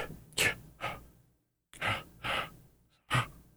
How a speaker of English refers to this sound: And now it's too sensitive. See? I want it to not get my mouth breathing.